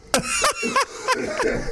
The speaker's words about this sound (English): Hang on. This is the worst timing possible, but I got to cough.